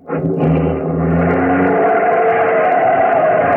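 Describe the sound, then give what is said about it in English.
A taxi's engine starts low and revs up, climbing into a loud, sustained roar as the taxi accelerates hard to get away from a car following it, steady with no voices. “See if you can get away from that car that's following us.”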